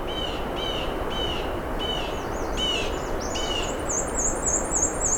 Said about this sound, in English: Oh, what was that? The common yellow throat?